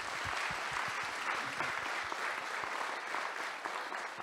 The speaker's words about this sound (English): I just want to say, give them a hand of applause.